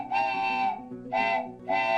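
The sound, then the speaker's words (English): A steam whistle shrieks in three loud blasts, the first long and the next two shorter, with a steady high harmonic tone over a low rumbling hiss and no one speaking. “It's always good to blow off some steam.”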